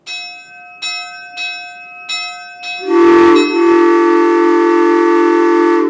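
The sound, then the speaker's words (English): A big, genuine steam locomotive train bell clangs about five times at a steady pace, its tones ringing on, before a loud, sustained 100 PSI steam locomotive train whistle blasts over it. No one speaks. “We have our own genuine train bell and 100 PSI train whistle right off of a steam locomotive.”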